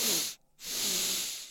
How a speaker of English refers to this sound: And this exercise involves breathing with a double intake and an extended exhale. So try this like this. A double intake.